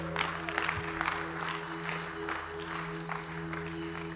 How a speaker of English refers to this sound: Come on, let's give them a clap.